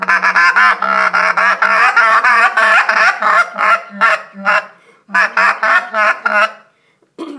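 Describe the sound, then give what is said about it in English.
Excited geese honking loudly and rapidly, calls overlapping in a dense, nearly continuous clamor that pauses briefly, resumes, then trails off with a final short honk. “This is what you do to show that the geese are really excited.”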